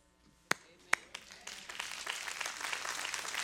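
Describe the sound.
A small audience breaks into applause: a couple of sharp, separate claps first, then a growing patter of many hands clapping steadily and moderately loud, with a faint hum of voices underneath.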